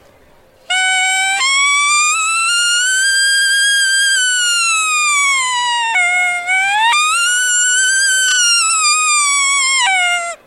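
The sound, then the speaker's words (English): A latex diaphragm elk call blown in long, loud tonal notes that climb high, hold, then break sharply down to a low note and jump back up, forming rising and falling bugle-like cries. “Just getting to make a sound and be able to control the latex to go to the high note and the low note.”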